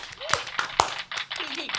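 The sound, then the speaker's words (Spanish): A few sharp, scattered claps welcoming a returning guest who represents Garantice Su Futuro ring out amid voices talking, rather than a full, sustained burst of applause; the claps are brief and irregular, poking above the chatter. “Un aplauso.”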